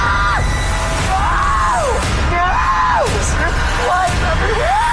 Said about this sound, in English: The screams of terror for me.